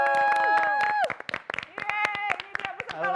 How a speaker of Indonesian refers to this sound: Kita kasih tepuk tangan paling kencang dan tepuk tangan virtual untuk Iqbal Ramadan.